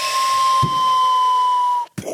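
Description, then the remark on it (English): Someone imitates a torpedo moving through water with a long, steady hissing whoosh carrying a thin whistling tone, held for nearly two seconds before cutting off abruptly. “Can you make it sound like a torpedo? What does a torpedo sound like? It's in the water.”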